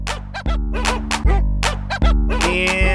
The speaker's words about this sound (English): We'll just fill out the rest of the 30 seconds with this dog song.